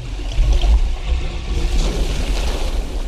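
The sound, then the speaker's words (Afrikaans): Water drains away with a steady, rumbling gurgle and a deep low-end roar, continuous and fairly loud throughout, with no voices. “What's that noise? Look what you did. The water's going down.”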